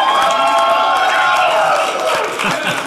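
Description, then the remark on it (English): A studio audience breaks into steady applause mixed with cheers and whoops for the four members of a band just introduced, a dense, loud wash of clapping that holds for the full few seconds. “Have a round of applause.”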